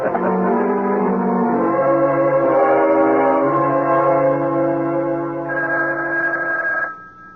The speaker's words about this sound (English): Gil? Gil, wake up, the phone. What? It's the phone, Gil. Can't you hear it?